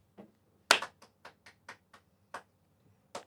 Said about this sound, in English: That's unlucky, homie. That is unlucky. You get the patented hobby homies sympathy clap.